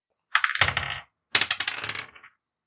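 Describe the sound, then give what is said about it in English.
Two bursts of dice rolled for stealth and deception checks clattering across a hard surface, each a quick rattle of small clicks and knocks lasting under a second, with a short pause between them and no voices. “Everyone roll stealth and deception.”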